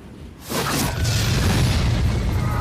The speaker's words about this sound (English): And there's also this scene when flaming arrows are shot at the fighters on the horses on the battlefield. Those are the arrows.